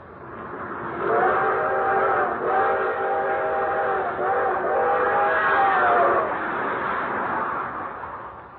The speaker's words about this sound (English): One thing he especially liked was the long, drawn-out whistle of the 20th Century Limited as she highballed it through the countryside.